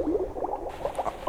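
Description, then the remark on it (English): A rapid run of nasal, raspy duck quacks, steady throughout, with no talking over them. “Whoa, you guys, is there a real duck in here?”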